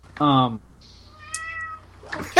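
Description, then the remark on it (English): A cat meows loudly, then gives a softer, drawn-out second meow, followed by a brief rustling burst at the end. “Was that a cat?”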